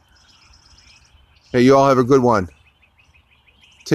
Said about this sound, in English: listen to the birds chirp, singing, and tweeting.